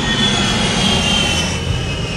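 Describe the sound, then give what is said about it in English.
A loud, steady roar of an airplane passing overhead near an Air Force base, heard while driving by, a deep rumble with a high whine on top, filling the whole clip with no talking. “The airplane was loud. I'm driving right by the Air Force Base right now.”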